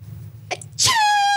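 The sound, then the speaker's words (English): A voice imitates a girl's sneeze: a brief sharp intake, then a loud, squeaky high-pitched burst that trails into a sustained whiny tone, alone. “I knew a girl that used to sneeze like Pikachu”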